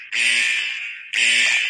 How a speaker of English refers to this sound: It's a buzzer because that's robbery.